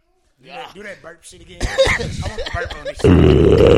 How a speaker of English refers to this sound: Do that burp shit again. I want to burp on this shit. Exactly. I gotta find a burp.